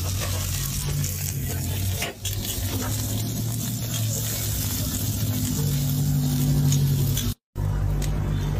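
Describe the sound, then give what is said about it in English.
Steady, crackling sizzle of molitas frying on a hot griddle, loud, with a constant low hum underneath and a brief dropout near the end. “So that's the making of the molitas right there.”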